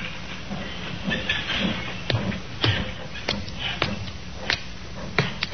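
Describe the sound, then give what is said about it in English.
Railroad cars rolling slowly through a railroad yard at Alnmouth, in the coal district around Newcastle, with a steady hiss and a series of sharp metallic clanks and knocks at uneven intervals, moderately loud, with no voices. “A puzzle which began in the railroad yard at Alnmouth in the coal district around Newcastle.”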